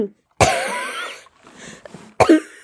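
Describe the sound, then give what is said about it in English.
Two harsh coughs with a short pause between them. The first is a long, raspy hack that trails off into wheezy breathing; the second is a brief, sharp bark. “Coughs included.”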